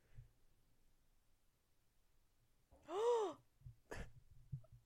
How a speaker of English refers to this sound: Love the gasps.